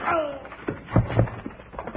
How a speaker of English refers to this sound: Woo-wee, Bill. That punch would have jarred his granddaddy and Timbuktu.